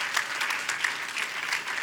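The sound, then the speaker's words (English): A church audience claps together to say yes to God, in a steady, sustained burst of applause, many hands producing a dense crackling patter at even loudness throughout, with no voices standing out. “Come on, if you got faith for it, make a little bit of noise with a little clap and say yes to God.”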